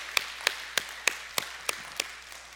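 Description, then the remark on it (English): A single person claps seven times in a steady, even rhythm, each clap sharp and bright at moderate volume, with no other sounds around it. “I'll clap for that too.”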